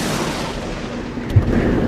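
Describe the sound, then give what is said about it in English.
A deep, continuous rumble of thunder from an approaching storm with lightning rolls steadily, swelling into a brief heavier boom partway through before settling back into a low, sustained growl. No voices are heard. “We gotta get home before the storm gets any more intense.”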